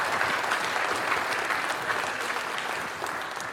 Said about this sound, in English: Hey, there's our Senegal team. Everybody wave. Everybody applaud for the Senegal team. They are leaving right now.